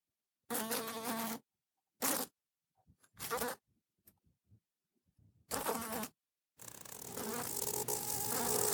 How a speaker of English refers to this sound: Black flies were just as troublesome in 1882 as they are today.